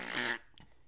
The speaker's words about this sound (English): she just farted on the wood bench at the courthouse.